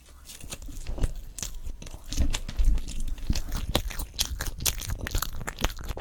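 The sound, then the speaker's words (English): Someone chews marshmallows with soft, wet, irregular smacks and squelches, a steady run of mouth noises for several seconds with no talking. “Marshmallows are really good.”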